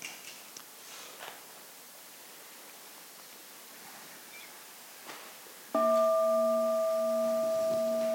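A single meditation bell is struck as the signal to rise from bowing in a ceremony honoring the Bodhisattva Avalokiteshvara. It rings out with a steady, clear tone and layered harmonics, sustaining loudly after a stretch of soft, hissing background ambience.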